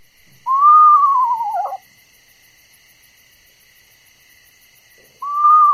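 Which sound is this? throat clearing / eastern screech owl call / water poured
eastern screech owl call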